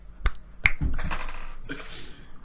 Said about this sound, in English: And so let's try this technology Jesus again and see if it works. Christ. I'm going to go ahead and do like three snaps.